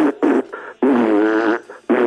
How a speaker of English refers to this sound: Cut it out with the fart sounds.